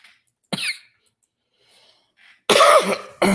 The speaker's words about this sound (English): You got me coughing and shit.